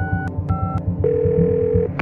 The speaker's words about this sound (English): When she spotted flames engulfing a car parked on the side of the roadway, she punched 911 into her phone.